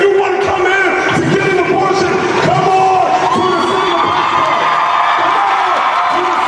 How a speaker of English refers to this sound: People cheering? Yeah, so the mayor says Pittsburgh's a place for abortion.